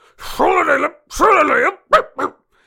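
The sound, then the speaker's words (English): Someone imitates a small, fluffy dog barking: two drawn-out, wavering yaps followed by two short, quick yips, loud and with nothing else in the background. “You hear a barking”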